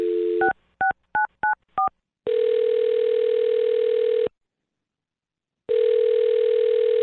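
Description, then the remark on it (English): A brief dial tone, then five quick touch-tone beeps as a woman's phone number is dialed, followed by a steady, clear ringback tone that buzzes twice with a pause between. No voices. “I'm going to dial her phone right now, okay?”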